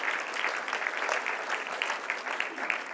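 An audience applauds together, a steady, dense patter of many hands clapping at an even loudness for a few seconds, with no clear speech on top.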